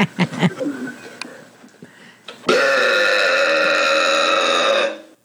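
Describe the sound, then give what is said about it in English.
A loud burp drags on for over two seconds, deep and rumbling, after a moment of softer gulping and throaty noises. “Time for some more burps.”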